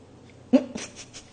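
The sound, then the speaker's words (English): A female puppy lets out a short, high whimper, followed by a few quick, breathy pants in a soft rhythmic burst. “She's like, don't talk about me.”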